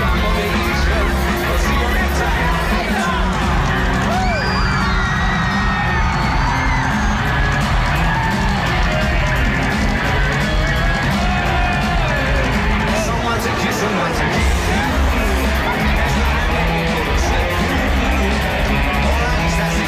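A dense, loud concert crowd roars continuously up close, with cheering, whoops and shouts layered over a constant wall of noisy babble for the whole stretch.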